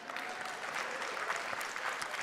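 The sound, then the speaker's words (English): Steady audience applause after a mention of the Pittsburgh Steelers and Super Bowls, a dense wash of many hands clapping at once, sustained and fairly loud throughout with no pauses or voices standing out. “The only time I'll get an applause is Pittsburgh Steelers.”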